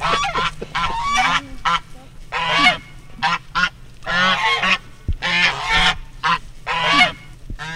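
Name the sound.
african geese honking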